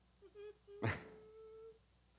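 A dog gives a couple of short, high whines, lets out a sudden sharp huff or sneeze-like burst, then holds a long thin whine, all fairly faint with no talking.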